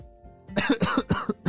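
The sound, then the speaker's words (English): A rapid burst of several harsh coughs in quick succession, loud and dry, following a brief quiet moment with no talking. “As Sid coughed and looked around, he realized that he had been captured by that creature, and there were several others inside of this cave.”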